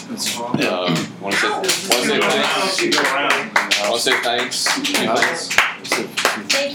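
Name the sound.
audience round of applause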